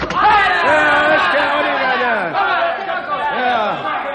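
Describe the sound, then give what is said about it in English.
A loud, agitated crowd of many voices shouts and clamors at once outside an open door, a dense continuous hubbub of overlapping yells rising and falling. “All right, quiet. Quiet, you people.”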